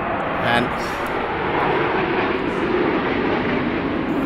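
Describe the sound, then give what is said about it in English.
A jet aircraft roars overhead in a loud, steady, continuous rush of engine noise that holds for the whole stretch, with voices faintly audible beneath it. “I guess that's a jet ready for the rerun.”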